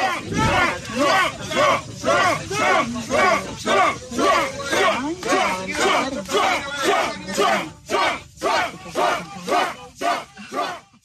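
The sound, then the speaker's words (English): A large crowd near the courthouse in downtown Atlanta chants loudly and rhythmically, shouting "Trump" over and over in steady bursts, with yelling and screaming mixed in throughout. “Folks, you think that, listen, in case you missed it, if you're listening on Apple or Spotify or SoundCloud or whatever, everyone screaming Trump was black.”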